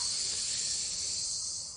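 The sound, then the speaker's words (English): A long, deep inhale: a steady, airy hiss of breath drawn in for almost two seconds, holding even before easing off slightly at the end, with no talking. “I just want you to take a big breath in. So breathe in.”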